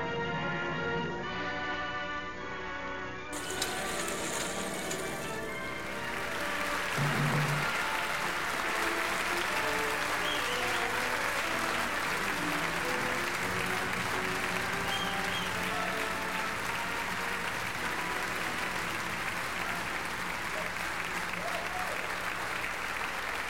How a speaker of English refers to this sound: Oh, a lasting applause from the crowd here in Halifax as CNY Table Reads bids us adieu one final time on the Summerstock stage.